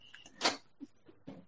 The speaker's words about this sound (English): Oh, and my dog just decided to open the door. Nice! Because he's good like that.